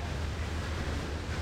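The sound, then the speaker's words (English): Steady rushing wind and churning water over a low engine rumble, a constant, fairly loud wash of noise on the open deck of the Fauntleroy–Vashon ferry crossing Puget Sound on a clear, sunny day, with no voices. “Out on the deck, it's a beautiful day. Light blue sky, dark blue water.”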